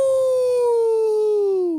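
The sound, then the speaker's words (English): A person howls like a wolf, one loud, sustained note that slowly slides downward in pitch over about two seconds before trailing off. “Tell your wolf pack. Howl.”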